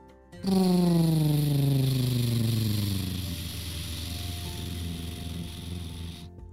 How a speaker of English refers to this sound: Noah and Rose carefully landed the plane down on the water next to the island.